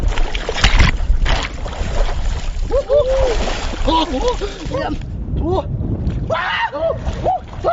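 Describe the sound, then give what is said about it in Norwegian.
People in bathrobes plunge into cold water for an ice bath amid continuous churning and splattering, with several voices whooping and yelping over the noise outdoors. “Da var det bare å ta badekåpene og skynde seg ned I det kalde vannet.”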